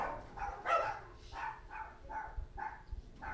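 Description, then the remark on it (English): Small dogs bark and yap in a rapid, uneven series of about seven sharp, high-pitched yelps during a dogfight, with no one talking. “Dogfight.”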